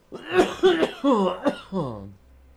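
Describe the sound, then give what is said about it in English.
Several people cough in a quick, ragged run of about five voiced, throaty bursts, fairly loud, with some throat clearing mixed in before the sounds trail off. “As we're all coughing.”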